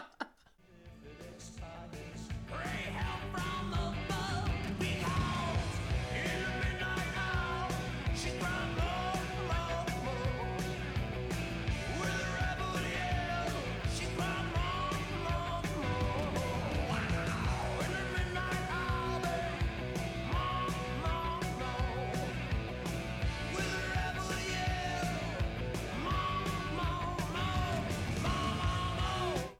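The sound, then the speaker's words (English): A loud rock song plays continuously for the full half minute, gruff male vocals riding over heavy distorted guitar and a driving beat, kicking in after a brief quiet opening. “He puts a little bit of gruff into those vocals. I agree. There's distorted guitar?”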